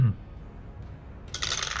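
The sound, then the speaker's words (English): A dense, rattling clatter of many dice tumbling across a hard tabletop, fairly loud, arriving after a short quiet stretch and continuing to the end. “Good lord, that's a lot of dice.”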